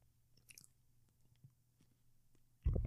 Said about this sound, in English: And we're going to talk about this after I take a sip of water.